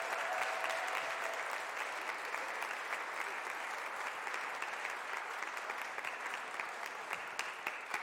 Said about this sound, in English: So could we give him a very warm round of applause to Pastor Glenn Burris? Thank you so much.